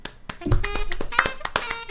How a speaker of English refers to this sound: And let's give that like a medium-sized applause, I think.